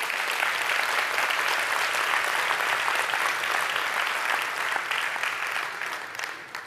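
An audience claps steadily in a dense, sustained wash of applause that holds at an even level for several seconds, then begins to taper off toward the end.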